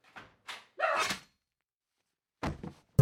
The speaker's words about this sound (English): Hello? Hey, did we record that? Ooh. Is that you knocking at the door? Yes.